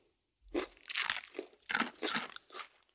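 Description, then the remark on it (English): Loud, crisp crunching of a brittle fortune cookie being bitten and chewed, in a series of sharp bursts over a few seconds with no talking. “Don't eat your fortune cookie.”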